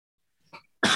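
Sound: sneeze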